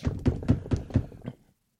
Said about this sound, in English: What is that? What's somebody knocking on your van? What is that?